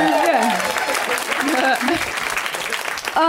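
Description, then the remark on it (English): An audience at a live comedy show applauds in a dense, steady wash of clapping that fills the whole stretch, with voices talking and calling out over it. “You should have clapped again.”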